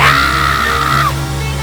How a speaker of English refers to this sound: I need everybody to scream in here. 1, 2, 3.